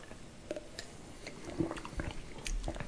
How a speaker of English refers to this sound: I'm certainly getting a tartness out of this. I think I'm going to have to take a sip and see if it's a little bit more sour than we might expect.